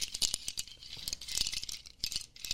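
A rattle of a native instrument made of small nut shells tied to a stick, shaken in quick uneven bursts that give off a dry, bright clattering, fairly soft, with no voices.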